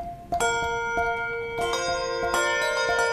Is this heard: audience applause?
no